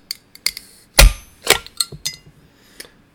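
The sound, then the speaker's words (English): A glass cola bottle being opened, with a series of sharp clinks and metallic clicks, one louder crack in the middle, and no voices. “Interesting sound as it opens.”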